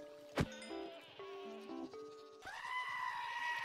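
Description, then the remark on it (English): Video game goats, including a screaming goat, bleat in a quick series of nasal, wavering cries, followed by a longer, higher screaming bleat, all fairly loud with no talking. “He dropped this admire horn, which can only be gotten from screaming goats.”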